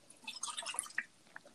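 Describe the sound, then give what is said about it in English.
Coke being poured out, a quick splashy, fizzy gush of liquid lasting under a second, followed by a few scattered drips as it trails off. Fairly quiet, no voices. “I'm pouring a Coke out.”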